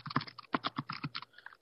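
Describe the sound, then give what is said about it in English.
Rapid typing on a computer keyboard, a quick run of crisp clicks and taps in uneven bursts, with no voices. “Sorry, just typing a little something there.”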